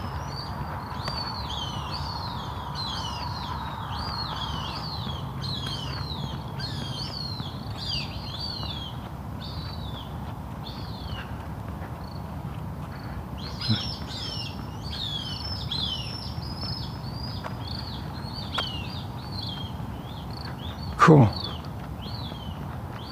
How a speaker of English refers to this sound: Yeah, it is a hawk. I thought it was a crow for a minute, but it's a sharpshin.